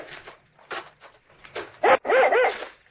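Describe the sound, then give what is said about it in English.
A dog barks excitedly in a quick run of loud, high-pitched yelps, starting with softer scattered barks and building into rapid, insistent barking. “Here, what's the matter with your dog? I seem to have found something ahead there. Well, it's not like him to get that excited.”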